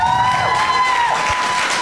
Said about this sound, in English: Please stay around. Round of applause to the panel.